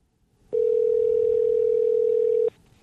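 One steady telephone ringback tone of an outgoing phone call sounds for about two seconds, clear and even, then stops, with nothing else but faint background hiss around it.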